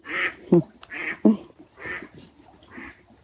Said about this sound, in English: Duck.